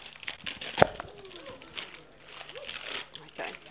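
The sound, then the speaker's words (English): Noisy crinkling and rustling of paper as a child pulls and tears open a paper-wrapped parcel in irregular bursts, with a sharp rip near the start and faint voices in the background. “There's something in each parcel. Can you get yours open?”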